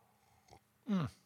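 A brief, faint slurp of a sip of beer made with lactose and vanilla, followed by a loud, throaty, satisfied exhale whose pitch slides downward, almost like a small burp, then quiet.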